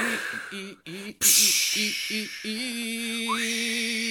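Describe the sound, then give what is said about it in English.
Someone imitates beach waves with their voice: short hummed tones, then a loud breathy whoosh that swells and lingers, followed by a steady sustained hum with hissing breath underneath. “I'm adding beach noises.”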